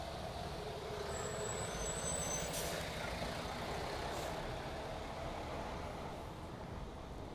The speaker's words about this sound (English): Hold on, truck coming.